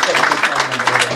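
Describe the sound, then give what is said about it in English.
A brief burst of audience clapping, a dense, steady patter of many hands at fairly loud level, with a faint low hum underneath. “Clap.”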